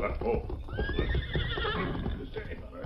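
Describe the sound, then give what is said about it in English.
Hoofbeats of Scout, Tonto's paint horse, approach the stage office in the town of Morgan, clopping in a steady, busy rhythm, with the horse's loud whinny rising and falling over the hoofbeats. “As the masked man sat in the shadows near the stage office, he heard hoofbeats approaching. He recognized them as those of Tonto's paint horse, Scout.”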